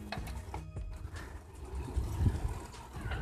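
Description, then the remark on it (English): A car goes by on a quiet road, its low engine rumble and tyre noise swelling briefly midway, then easing off against steady background road noise. “Just passing a car there. I'm actually on a road, but it's a very quiet road, so I think I'm right to do a bit of chatting.”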